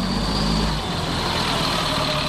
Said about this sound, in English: Operation Free's bus, powered by biodiesel, has rolled through 22 states so far, drumming up support for legislation on clean energy and climate change.